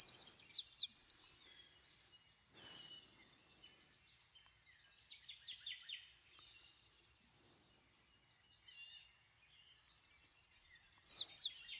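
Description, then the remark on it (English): A bird chirps in quick, bright bursts, loud at the start and end, with softer tweets scattered through the quieter middle stretch. “It's a bird, Dad.”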